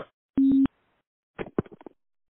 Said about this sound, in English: I dropped the phone. Can you start over?